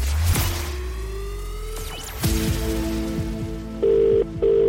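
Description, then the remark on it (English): A phone rings near the end, two steady buzzing tone bursts with a short gap between them, following a stretch of swooshing sound effects and sharp hits. No one speaks. “As long as you pick up the phone within five rings and tell me the exact amount, then it's yours.”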